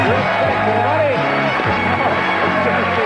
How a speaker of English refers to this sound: Wow, they're showing a crowd shot, and two guys got really excited. They, like, stood up and clapped for Chuck.